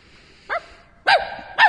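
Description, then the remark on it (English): A dog barks three times, sharp, with short pauses between the barks and no voices around them. “He won't bite you until I close the door.”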